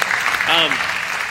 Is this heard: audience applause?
yes